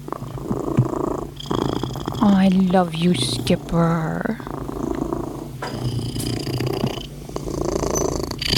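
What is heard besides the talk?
cat purring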